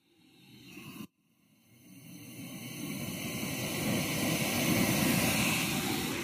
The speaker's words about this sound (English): The sound of my jet boil going down here just past the Jones Creek campground.